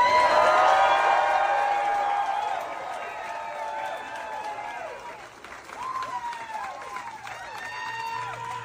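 Thunderous applause from a large concert crowd after a reading of Psalm 37, dense clapping mixed with cheers, whoops and shrill whistles, loudest at first, then easing slightly but carrying on steadily throughout.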